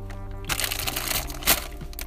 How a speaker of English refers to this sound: Oh, I ripped the whole bag.